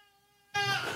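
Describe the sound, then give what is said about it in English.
A 5-month-old baby cries, starting with a steady high-pitched wail that suddenly bursts into a loud, harsh scream halfway through. “Yes, as I have a screaming 5-month-old baby in the background.”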